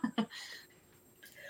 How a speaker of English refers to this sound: She's having a coughing fit.